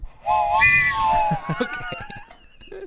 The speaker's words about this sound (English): That's like one of those... like the breathalyzer test that they give you. If you can't make an audible train sound, then you have lung issues.